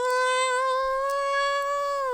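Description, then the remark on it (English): A single long, drawn-out meow sung by a human voice imitating a cat in a song, loud, holding a steady pitch for about two seconds before tapering off. “Would be cute if they was not meowing like cats.”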